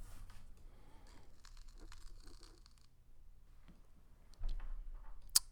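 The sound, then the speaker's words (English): Faint, irregular crackling and soft pops over a low steady hum at the opening moments of a song played in a music quiz, with a sharper click near the end and no voices. “Did you hear that? The crackling.”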